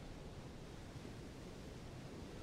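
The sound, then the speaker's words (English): Gentle waves lap at the water's edge in a soft, steady wash of sound, fairly quiet and unbroken, with no voices present. “Take a couple of steps to the water's edge.”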